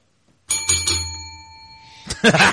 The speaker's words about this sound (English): You got to the bell before me.